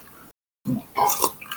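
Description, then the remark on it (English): After a brief silence, someone slurps a brandy old fashioned cocktail, a few wet, sucking sips running together for about a second. “That you slurping or the dog burping? It was me slurping, sorry.”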